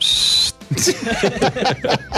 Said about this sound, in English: Hit the whistle button, Mike. Fair enough. There we go. That's the whistle.